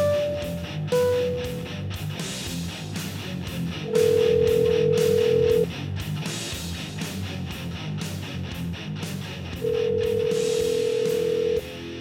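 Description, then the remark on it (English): A few quick dialing beeps open a phone call, followed by two long, steady ringing tones several seconds apart, clear over a dense, busy background hum. “So with no further ado, let's get this party started and get the captain on the phone.”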